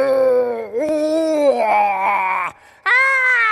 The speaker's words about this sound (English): As she ran, she heard a loud cry behind her. And then another cry, only deeper.